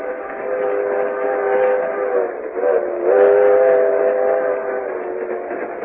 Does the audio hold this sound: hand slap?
no